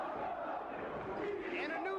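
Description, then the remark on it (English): A large crowd at an ECW wrestling show chants "ECW" in unison, a loud, sustained roar of many voices with rhythmic rising and falling pitch, no single speaker standing out. “The crowd's chanting. ECW chant.”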